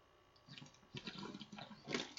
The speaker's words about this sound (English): guys, I gotta take a water break here for a second. My mouth is like as dry as the Sahara Desert. this water's like bottles dripping all over.